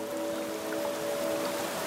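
Steady rain patters on a street in a dense, continuous hiss of countless small drops, with a faint, even tonal hum running underneath. No one speaks.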